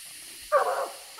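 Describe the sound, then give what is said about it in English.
About a quarter mile down a creek, a coonhound bays treed at a leaning tree that it thinks a raccoon ran up: one drawn-out, ringing bark, then the start of another, heard alone over a faint outdoor hiss. “The dogs take the track about a quarter mile down the creek and begin to bark treed.”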